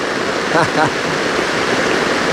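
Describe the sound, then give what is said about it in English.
A steady, dense hiss of heavy rain pours down without a break, loud, with a brief murmur of voice rising faintly through it near the start. “We have the rain.”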